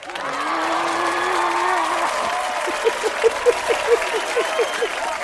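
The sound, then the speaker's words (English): Sustained applause and cheering from fans in a live virtual studio, steady throughout, with a long whistle early on and a rapid series of short, rising whistle chirps over the clapping in the second half. “I like the applause.”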